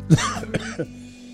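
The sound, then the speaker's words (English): A short fit of coughing on a weekday community radio show in the Upper Ohio Valley: three harsh bursts in quick succession, the first the loudest, then quiet. No one speaks. “I cough in your face.”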